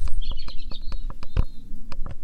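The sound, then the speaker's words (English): A robin sings a thin, high warbling phrase, mostly early on, with a series of sharp clicking ticks scattered throughout and no talking. “Robin song.”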